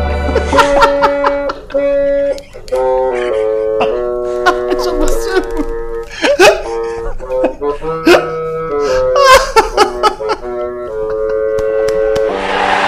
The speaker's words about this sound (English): Nice. Some live bassoon there.